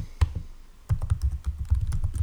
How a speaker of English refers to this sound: By the way, if you're noticing I'm typing aggressively, it's because I spilled water on my keyboard and it's not working properly.